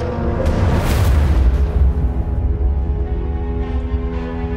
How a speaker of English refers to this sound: The sound of gunfire filled the air. And when that stopped, the real screaming began.